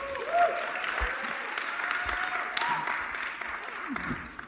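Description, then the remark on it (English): A crowd claps steadily for several seconds for a couple married 60 years, a dense, even wash of applause with no pauses, joined by a few faint cheers and whistles. “I feel like that deserves a round of applause.”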